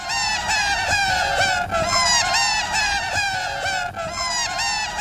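A sped-up tape loop of a man laughing that sounds like a flock of squawking seagulls, loud and continuous, with dense, shrill repeated cries overlapping throughout and no talking.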